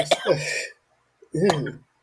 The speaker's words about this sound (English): Ow. What the fuck just happened? Are you choking on your dip? What happened? No. I was eating the noodles. Oh. Ew. But I coughed, so they went, like, into the back of my nasal cavity.